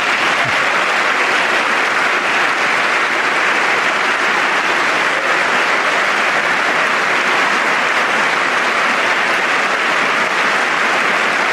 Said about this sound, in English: Actually got some Democrats. And finally, clapping.